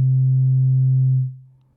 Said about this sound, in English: The voltage outputs are going straight into the levels input on the 292E. So I'm plugging in pulses from the 223 to adjust the start and strobe sections of section B. And right now we just have a kind of a drone going on right here.